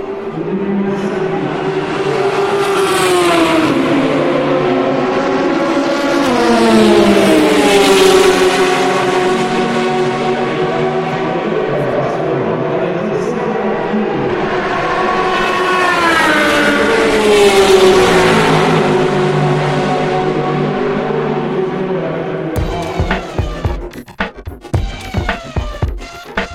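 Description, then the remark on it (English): Race cars scream past one after another at Le Mans at midnight, their high-revving engines sweeping up and down in pitch and swelling twice to a loud roar, before the sound breaks into sharp crackles and pops at the end. “The sound of Le Mans at night, at midnight, at 180 degrees stereo.”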